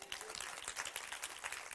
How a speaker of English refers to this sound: That's so big to me. Even if you've heard it 1,000 times, you ought to applaud for that 1,001.